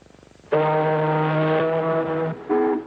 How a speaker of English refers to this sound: Now, an ocean liner?